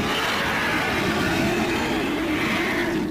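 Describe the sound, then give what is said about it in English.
A loud imitated stomach growl, voiced as the hungry stomach of the character Rikus in a sewer during a role-play game: a steady, rough rumbling that holds for about three seconds without pause. It is harsh and noisy, with no talking over it. “Oh, shit. Rikus' stomach? Yeah, sorry, I'm a little hungry, guys.”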